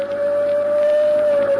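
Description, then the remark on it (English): A fire engine siren holds a single loud, steady mid-pitched tone without rising or falling, droning continuously over a low rumbling background, with no voices. “You've remembered that no one ever stops a fire engine, at least when it's headed for a fire.”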